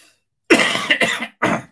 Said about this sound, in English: Apologies for my cough.